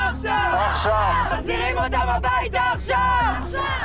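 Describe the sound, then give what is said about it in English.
A large crowd shouts and chants together at the March for Israel on the National Mall in Washington, D.C., demanding that hostages be released and denouncing anti-Semitism, many voices rising and falling in loud, rhythmic bursts that carry on without a break. “Large crowds in Washington, D.C. are also demanding that hostages be released and denouncing anti-Semitism.”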